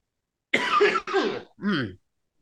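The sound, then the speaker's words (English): A person makes phlegmy, wet coughing and throat-clearing sounds: two rough bursts followed by a lower, gravelly hack, all within a couple of seconds. “Just coughing, phlegmy, dealing with fuck you.”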